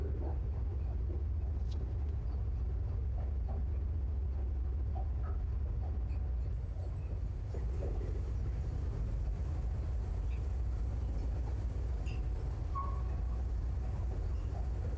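A steady, heavy low rumble of a moving train heard from inside the carriage, continuous and even throughout, with faint clatters and muffled background noise drifting over it.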